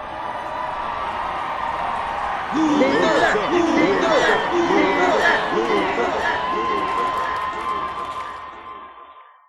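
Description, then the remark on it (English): A large crowd cheers and shouts continuously as Lex and Gordon shake hands, a dense roar of many voices swelling louder after a couple of seconds, then fading out at the very end. “The crowd cheers as Lex and Gordon shake hands.”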